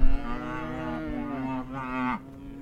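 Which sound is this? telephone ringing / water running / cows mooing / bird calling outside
cows mooing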